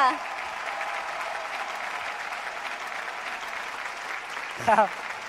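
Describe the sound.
Steady, sustained applause from an audience fills the whole stretch as the speaker's mother and father stand to receive it, a dense wash of clapping at even volume, with a brief voice breaking through near the end.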